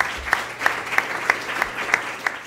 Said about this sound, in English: So I think that concludes part one of today's event. So let's give our two panelists a round of applause.